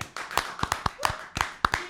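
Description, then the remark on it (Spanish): Scattered applause for Canal América from a small group on a TV programme, about a dozen sharp, irregular hand claps over two seconds, crisp and fairly loud, with no voices. “Vamos a darle un aplauso a Canal América.”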